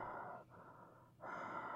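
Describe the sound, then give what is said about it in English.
Heavy, muffled breathing made deliberately creepy through a mask: a long inhale, a brief pause, then another drawn-out breath, rough and hollow, with no talking. “I'm doing creepy breathing through the mask.”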